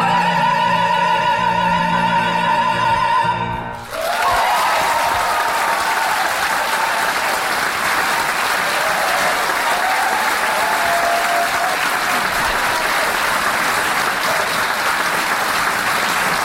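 A held musical chord rings briefly, then cuts into loud, dense applause from a large audience that carries on steadily and evenly to the end, with no voices standing out.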